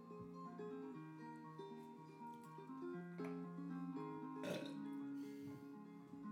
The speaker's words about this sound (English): We get another 30 seconds because I burped.